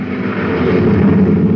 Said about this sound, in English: Wow, that guy drives like a maniac. Did you see him whiz past us? It's a maintenance truck.